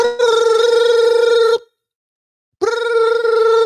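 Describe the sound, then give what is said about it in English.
A loud telephone rings in two bursts separated by a second of silence, each ring a bright, trilling bell tone with strong harmonics, clear with no voices. “You get that phone call.”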